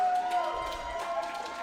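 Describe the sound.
A crowd applauds and cheers for the champions, a steady wash of clapping and voices with a sustained tone running underneath, holding an even loudness for the whole moment.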